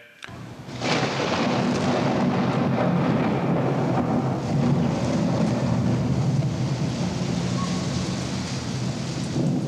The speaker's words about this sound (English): And he did a sound design, and we mentioned earlier in the piece about you're going to get to hear the sound of the Johnstown flood. So I'll play a little bit of that.